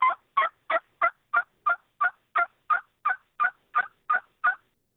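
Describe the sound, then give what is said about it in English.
A steady series of about fourteen hen turkey yelps made on a turkey call to simulate a mother hen gathering her scattered young back together, for fall turkey hunting; evenly spaced and clear, with no talking. “Just a simple yelp like that can simulate the mom trying to gather all the babies back together.”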